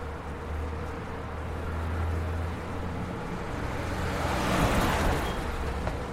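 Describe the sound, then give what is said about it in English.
Steady roar of traffic on a busy city road with a pedestrian crossing in Akihabara, with a low engine rumble underneath and one vehicle swelling louder as it passes toward the end. No one speaks. “Directly ahead of us, across a busy road, we're going to cross this road over the pedestrian crossing to our right, heading for Uniqlo on the corner.”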